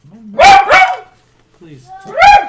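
A dog barks loudly and close by: two quick barks in a row, a short pause with a soft whine, then one more bark.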